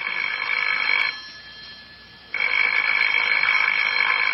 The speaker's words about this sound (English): Well, answer the phone, Lancelot.